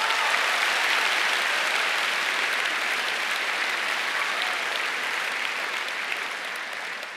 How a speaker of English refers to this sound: So no loans for that. You can clap for that because that's pretty amazing.